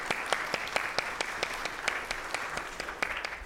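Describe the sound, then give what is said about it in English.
A church audience claps steadily in a sustained round of applause during a service, a dense wash of overlapping hand claps with some sharper individual claps standing out, moderately loud and without speech. “A little sanctified round of applause is great, and encouragement too for the young people in our day to do things for the church and the Lord.”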